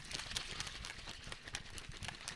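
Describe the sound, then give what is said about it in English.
Protein shaker blender bottles being shaken hard, a steady run of quick rattling, sloshing knocks repeating several times a second at an even, fairly loud level, with no voices. “We're going to see if we can shake these guys up.”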